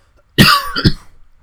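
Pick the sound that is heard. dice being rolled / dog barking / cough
cough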